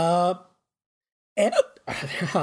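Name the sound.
hiccups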